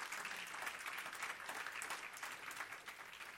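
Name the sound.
audience clapping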